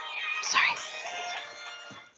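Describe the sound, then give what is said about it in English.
A phone goes off with a brief burst of bright, warbling electronic tones lasting about two seconds, moderately loud, then fades out with no one speaking. “No, your phone is celebrating the destruction of the Razor Crest.”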